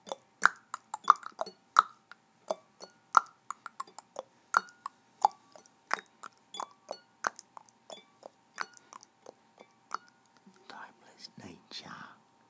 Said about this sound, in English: Tick, tock, goes the clock. A tick, a tock, goes the clock.